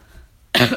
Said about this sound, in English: Excuse my coughing.